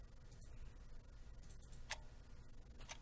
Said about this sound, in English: Comes the ticking clock.